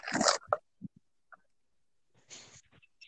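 Crisp munching on Parmesan cheese Goldfish crackers: a loud burst of crunching, a few soft chewing clicks and pauses, then another brief spell of crunching near the end.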